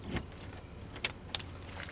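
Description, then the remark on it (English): A key jiggles in an apartment door lock during an eviction, with a constable standing by. A few short bright metallic clinks and rattles sound over a low, steady background hum. No one speaks. “as he jiggles a key in the door lock.”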